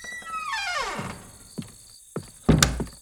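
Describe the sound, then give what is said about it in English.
A cabin door creaks open with a long, falling, squeaky groan, followed by three dull wooden thunks, the last one loudest and slightly rattling. No one speaks. “Here's the cabin door.”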